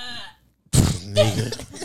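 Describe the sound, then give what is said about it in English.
After a brief trailing voice and a short pause, someone forces out a loud, raspy fake burp with the mouth open on the microphone, lasting over a second. “Yo, that was a kayfabe burp. The mouth was open on the mic.”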